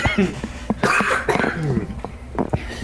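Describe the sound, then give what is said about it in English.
A few sharp coughs burst out in quick succession, with some throaty, breathy sounds and murmuring voices filling the gaps between them. “Excuse me. It's a cough!”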